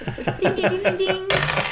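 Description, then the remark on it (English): Dice rolled during a Christmas trivia game clatter and tumble across a hard surface in a quick series of rattling, metallic-sounding clicks, moderately loud, with a faint voice humming underneath. “roll the dice.”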